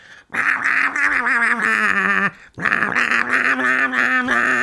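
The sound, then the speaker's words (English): A voice imitates gremlins singing a Christmas carol, producing a gravelly, growly wordless melody in two loud sustained phrases split by a short breath. “use and they start singing carols, but they start singing carols in gremlin, so it's to the tune of the Christmas carol, but no words.”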